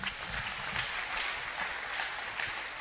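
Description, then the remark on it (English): Church members applaud for area fellowship members: steady applause fills the space, a dense, continuous patter of many hands clapping together at moderate volume for a few seconds. “Clap your hands for them.”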